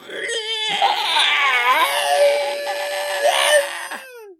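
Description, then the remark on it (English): Two voices imitate a Godzilla roar and an Anguirus roar together, a loud, sustained shrieking cry lasting about four seconds, its pitch wavering and grinding before breaking off abruptly. “do you want to do a Godzilla roar and I'll do an Anguirus roar at the same time to close this out?”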